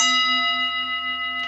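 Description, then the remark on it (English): A small bell is struck once and rings on with a bright, shimmering metallic tone and clear overtones, fading slowly and evenly, with no voices over it. “as this bell was rung, uh-huh.”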